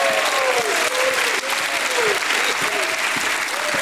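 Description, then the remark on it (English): A standing church audience claps loudly and steadily, giving God a hand clap and a shout of praise, a dense wash of applause with voices shouting and whooping praise above it throughout. “Come on, church, give him a hand clap and a shout of praise.”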